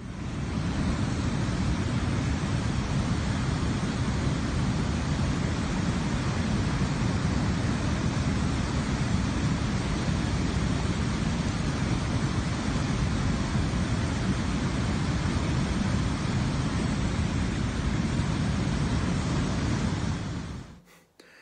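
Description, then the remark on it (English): A powerful, continuous roar of fast-flowing floodwater, dense and deep, rushing steadily for about twenty seconds before cutting off abruptly. No voices are heard. “the waters were at flood season, it says in the book of Joshua, in the flood season. So it wasn't that nice little river”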